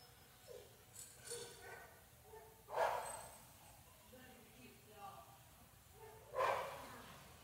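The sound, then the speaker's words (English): A dog barks twice, a few seconds apart, with each bark sharp. Faint talking and soft background noise continue between the barks. “All right, hey, just a reminder, there's the dog.”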